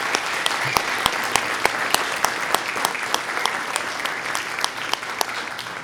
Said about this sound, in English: and so I'm going to make her stand up, and we're going to give her a big round of applause.